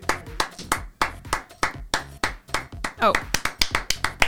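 Brief applause from a small group, with sharp hand claps landing in a quick, fairly steady rhythm for a few seconds, close and moderately loud.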